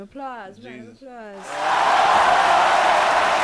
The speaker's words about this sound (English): We hit 2K. Oh shit. Round of applause.